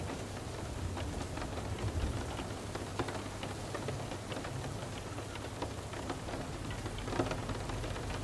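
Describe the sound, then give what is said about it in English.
Steady rain patters against a slightly open window, tiny droplets ticking sharply over a constant soft hiss and a low rumble beneath. No voices. “As you notice the sound of tiny droplets meeting your window, then individually and invisibly rolling down,”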